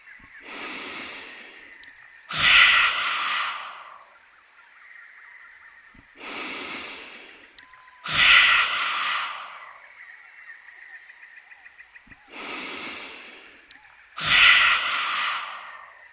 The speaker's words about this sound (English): Now, take a big breath in through your nose. Open your mouth really wide and stick out your tongue and let your air come out. You can make a roaring sound like a lion.